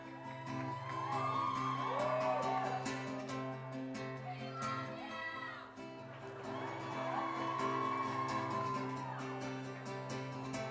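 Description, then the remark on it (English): A concert audience yells and whoops across the whole stretch before a song, shouting that they love the performers, shrill rising calls layered over a steady low hum of noise, fairly loud and continuous with no clear speech. “It's so hard to start a song when everyone just keeps yelling that they love you.”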